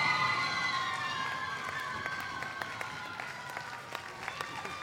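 A crowd cheers and applauds, with high whoops and shouting carrying over a steady wash of clapping. Sharp individual claps punctuate the noise, which stays loud throughout with no speech.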